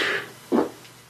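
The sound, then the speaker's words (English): A single short fart, a brief low, breathy burst lasting under a quarter second, fairly soft, with otherwise quiet surroundings and no talking. “Nice, your fart's on the commentary.”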